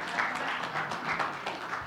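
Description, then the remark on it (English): An audience claps in steady, dense applause for about two seconds, a continuous crackle of many hands at fairly even loudness with no voices standing out. “As a child, or give Thomas a hand.”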